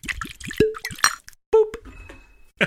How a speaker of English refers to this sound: Let's pop this open. All right. Here goes the cork pop.